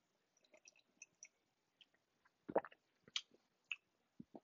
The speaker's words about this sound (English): Let's give it a try here. It's got a very sweet smell to it. You could definitely smell that oakiness to it. So let's give it a sip.